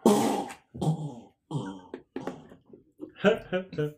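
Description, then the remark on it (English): A voice loudly imitates a fart during a D&D game, as the character Blumpkin farts on entering a massive atrium, in a string of buzzy, drawn-out bursts, about six in quick succession, each rising and trailing off, unaccompanied. “I just want to know that as soon as we walked into this massive atrium, Blumpkin immediately farts really loudly and we hear this.”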